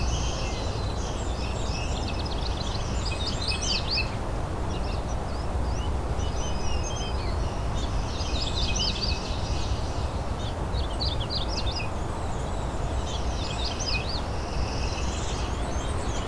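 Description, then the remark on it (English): A ruby-crowned kinglet sings softly in repeated high, twittering phrases, faint against a steady wash of outdoor background noise, with no one talking. “It's a ruby-crowned kinglet behind me here. So singing very quietly.”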